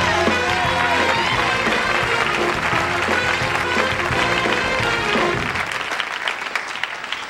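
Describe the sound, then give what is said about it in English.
A TV studio audience applauds loudly and steadily as David Letterman is welcomed, a dense wash of clapping with music playing underneath for most of it, the music dropping out near the end while the clapping continues. “Would you welcome, please, David Letterman.”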